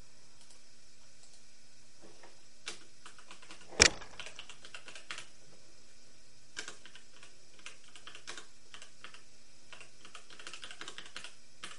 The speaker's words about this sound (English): I know, I'm typing. Tape, tape, tape, tape, tippity tape.